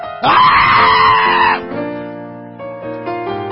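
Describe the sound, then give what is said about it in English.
A church audience bursts into loud screaming and cheering for about a second and a half because church is back, then it fades into steady sustained tones that carry on underneath to the end. “Everybody scream, church is back! Scream it for those online to hear.”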